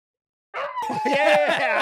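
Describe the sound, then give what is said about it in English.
A voice imitates the excited barking of Mahler, a fake news dog character on KUCI 88.9 FM radio in Irvine, California: a quick run of five or so high, yappy yips in steady rhythm, fairly loud, bursting in after a brief silence. “And as always, the one who thinks an ostrich jacket is for keeping ostriches warm, Mahler, the fake news dog.”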